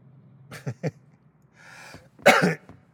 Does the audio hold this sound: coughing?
yes